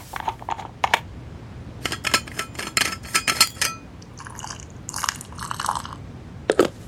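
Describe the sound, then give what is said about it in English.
Clicks and clattering as a thermos is unscrewed and handled, followed by a few short splashy bursts of eggnog being poured, with no one talking. “I actually have a thermos of eggnog here.”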